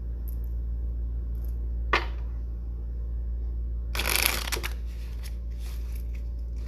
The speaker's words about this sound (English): And I'm going to shuffle the Thoth deck too before I begin begin the reading.